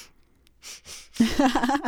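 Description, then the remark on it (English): Two quick, breathy nasal sniffs in a row, soft and hissy, followed right away by a person starting to talk. “Little Adderall sniff.”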